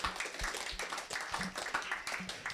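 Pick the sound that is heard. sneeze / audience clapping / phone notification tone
audience clapping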